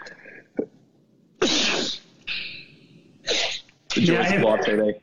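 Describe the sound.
A loud, intense sneeze up close, with sharp breathy bursts and a strained, voiced explosive finish, heard over a quiet background.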